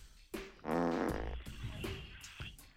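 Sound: fart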